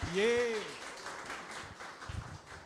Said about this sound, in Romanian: Hai să-l încurajăm pentru prin niște aplauze, nu?